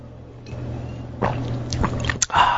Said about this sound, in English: So when you drink the Kangen water, which I have right here, I'm going to take a sip right now.